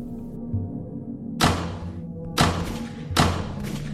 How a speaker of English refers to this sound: Then I realised it was gunfire. All behind the closed door. Could no one else hear it?